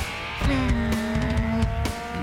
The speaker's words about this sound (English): Oh, yeah, there you go. Race car noises.